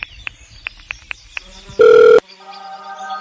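A phone call being placed: several quick keypad taps, a short loud electronic beep, then a steady, quieter ringing tone as the call connects and starts to ring.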